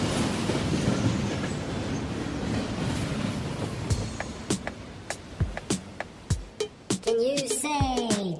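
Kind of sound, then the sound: vehicle, train passing by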